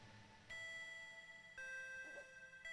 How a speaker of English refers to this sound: Sounds like one of those cheap doorbells you can buy that you glue to your front door. And I guess it should sound like it. I made it sound like it.